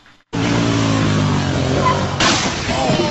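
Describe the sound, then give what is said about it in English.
A loud quad bike engine roars steadily as a kid rides it down a street doing a wheelie. About two seconds in, a sudden crashing impact hits as the quad strikes an oncoming car, followed by scraping, rattling commotion as the vehicle noise continues. “This kid riding a quad in the street, doing a wheelie, you know, showboating on camera, and he hits an oncoming car”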